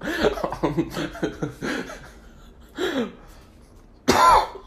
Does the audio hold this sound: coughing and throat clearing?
yes